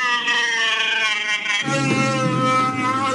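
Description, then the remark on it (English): A voice imitates Chewbacca's roar for a Chewbacca roaring competition, with a loud, sustained, warbling growl rich in harmonics, which turns rougher and deeper halfway through and keeps going for about three seconds. “advertising a Chewbacca roaring competition, promising a $100 prize for the best one”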